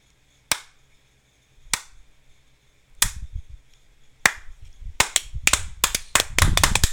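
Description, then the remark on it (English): Slow, deliberate hand claps ring out, spaced more than a second apart, then quicken into a rapid flurry of clapping by the end. No one speaks. “You get a slow clap!”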